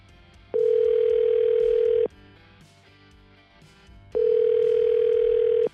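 Two long, steady telephone ringback tones, each lasting about a second and a half with a pause between, heard loud as an outgoing call from the hosts of the 101.9 POR radio show waits to be answered.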